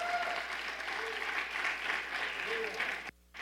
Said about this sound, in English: Yeah, give the Lord a round of applause.